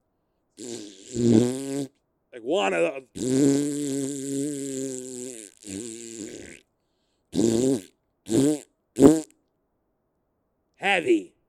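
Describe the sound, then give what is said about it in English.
A man blows a long, loud raspberry imitating a fart, a sustained buzzy burst followed by a few shorter sputters, then briefly speaks. “So I'm describing this fart to her, trying to lighten the mood, trying to, let's forget about the dentist for a second and laugh at the eye doctor who farted in front of me. So he lets out, I'm telling you, loud as can be.”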